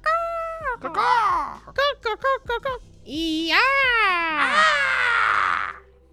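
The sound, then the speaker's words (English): People loudly scream bird noises into microphones: screechy, pitch-bending squawks, a quick run of short chirps in the middle, then long wavering shrieks that rise and fall before cutting off. “I'm sure that this is just riveting listening for any listeners who are like, oh, I love when people just scream bird noises into microphones.”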